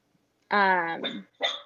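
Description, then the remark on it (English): A male pet dog barks twice, a drawn-out, tonal bark followed by a shorter, sharper one after a brief pause, with nothing else audible around it. “That's my doggy. Hey, come here. What's he barking at?”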